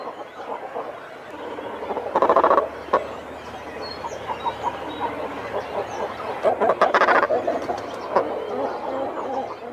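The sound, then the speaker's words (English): Guttural, croaking calls of shags or cormorants on the Calf of Man come in harsh bursts over a busy colony backdrop, with louder grunting clusters standing out near the start and again later. “And while over there, you're likely to come across both shags and cormorants.”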